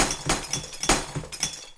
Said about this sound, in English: you would break it in this concrete pit here, close mic it, and have the sound of breaking glass. And you can make it exactly the way that you want to. Mm-hmm. And you can break as many glasses as you need to.